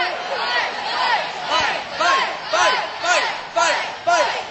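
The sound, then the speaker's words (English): A crowd of children shouting together in a rhythmic playground chant egging on a fight, loud overlapping voices pulsing roughly twice a second, steady and insistent throughout. “And what is everybody else on the playground shouting?”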